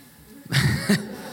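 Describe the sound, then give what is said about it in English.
A person imitates a snore with a single short, raspy snort lasting about half a second, rough and throaty with a low rattle, swelling twice before cutting off into quiet. “You be still and you go to sleep and snore.”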